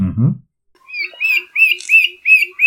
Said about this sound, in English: It took me some time. Isn't it the common woodshrike? Well, you are correct.